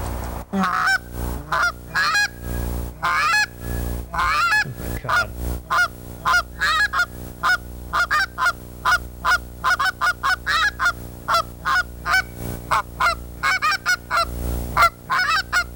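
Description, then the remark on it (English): A goose call blown in quick bursts, imitating a low gander and a young goose, producing a run of loud, nasal honks that jump between high and low pitches in an irregular rhythm, with no talking. “This call has got more of a high end to a low gander to a young goose.”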